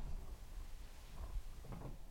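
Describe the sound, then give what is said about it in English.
A quiet mechanical clunk and click as a chair's tilt lock catches into place after leaning forward all the way, in a bedroom in North York, with a low rumbling shuffle of movement around it and no voices. “You have to lean forward all the way. Yeah. And then it clicks in.”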